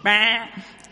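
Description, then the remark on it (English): A child's voice imitates a sheep with one short, loud bleat, held for under half a second, followed by a faint trailing sound and quiet. “What do sheep say?”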